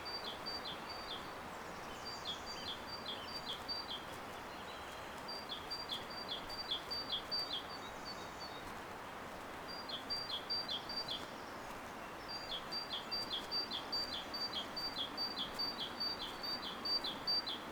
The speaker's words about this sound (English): Just listen to those birds. When your mind wanders, just bring it back to the sounds here, the sounds of the river and the birds. And Yoro scrambling in the bushes.